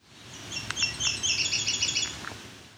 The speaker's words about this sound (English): This was a Nashville Warbler.